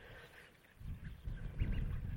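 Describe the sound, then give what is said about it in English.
A busy flock of wild shorebirds, waders and wildfowl squeaks, peeps and squawks, short overlapping calls rising over a steady low outdoor rumble that grows louder partway through. “There's so much squeaking and peeping and squawking. It's really interesting. So we've got on one side wild shorebirds, waders, wildfowl, and on the other, birds that you might find more in the garden.”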